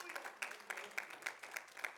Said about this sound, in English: Come on, y'all give the Lord a hand clap of praise this morning.